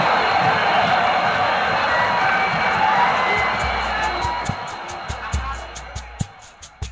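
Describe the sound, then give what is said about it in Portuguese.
A huge football stadium crowd of Corinthians fans roars and cheers a goal in stoppage time after Sócrates received from Zenon, making it Corinthians 1-0, a dense, loud wall of noise that slowly subsides, with scattered sharp claps and bangs popping through toward the end. “Já nos descontos da partida, o Dr. Sócrates recebeu Zenon e incendiou a torcida.”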